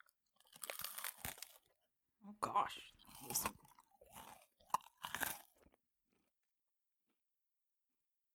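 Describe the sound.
Loud crunching as someone bites into and chews a crunchy cereal bar, several bursts of crackly chewing over a few seconds, with a brief spoken exclamation.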